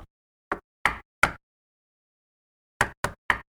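Knocking at a door: a few sharp, evenly spaced raps, a pause of over a second, then three quicker knocks in a row. No voices, just the clear hollow thuds.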